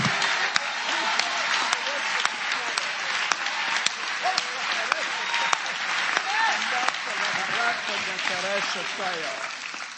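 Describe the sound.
An audience claps hands steadily for about ten seconds, a dense, even patter of applause with occasional sharper claps standing out, and voices murmuring and calling faintly underneath.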